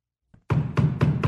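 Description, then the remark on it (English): Four heavy knocks land in a steady, evenly spaced rhythm after a brief faint tap, each loud and booming with a short ringing decay, with no voices. “Whence is that knocking?”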